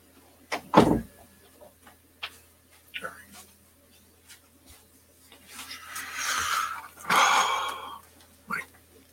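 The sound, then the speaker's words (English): An office door is opened to let a cat out: a sharp knock or latch clunk near the start, then a longer scraping, creaking swing a few seconds later, with quiet rustling between. “Hang on, one of my cats wants out of my office.”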